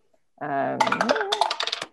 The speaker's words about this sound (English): Is that a dice tower, by the way? It is. Yeah. In a crossover event, it's a Ravenclaw dice tower. I just heard the clickety clack of multiple hits, and I was like, ooh.